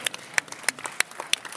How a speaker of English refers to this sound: Okay, guys, we have to move along, but thank you very much. Thank you so much. Yes. A round of applause.